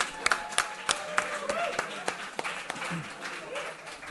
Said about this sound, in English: Are you guys ready? Let's make a round of applause for the best comic books of the year.